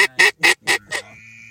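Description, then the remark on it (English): A flock of about 15 ducks calls as it flies in overhead, with five loud, raspy quacks in a quick, steady rhythm. A faint steady hum lingers after the calls stop. No one speaks. “Nice flock of ducks coming in.”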